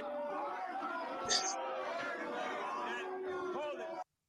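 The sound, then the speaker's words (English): A studio audience of a television talk show cheers and shouts as host Morton Downey Jr. is introduced, a dense, steady roar of many voices with a brief sharper whoop near the middle, holding for about four seconds before cutting off abruptly. “I love how this guy's doing his intro because it is so unnecessarily paused to give the crowd,”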